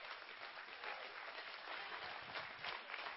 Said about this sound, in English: Somebody clap your hands and give God glory.